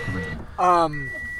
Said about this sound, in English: I'm gonna roll up the window. Sorry guys, you're gonna hear some cars. It's a little cold, yeah.